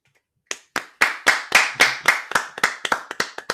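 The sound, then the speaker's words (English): About a dozen sharp hand claps after a brief silence, coming in a quick steady rhythm of roughly four per second, crisp and fairly loud, with no talking. “I guess we had a technical difficulty there on the clapping, but you get the idea.”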